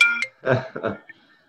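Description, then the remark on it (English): A phone ringtone gives a brief, clear electronic chime at the very start, then cuts off as two muffled bursts of voice or handling noise follow. “Now my phone.”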